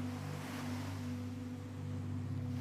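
A steady wash of ocean surf fills the background, layered over a constant low droning hum, with no voices and no distinct individual wave crashes.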